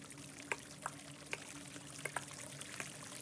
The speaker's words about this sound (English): locations that you can have water flowing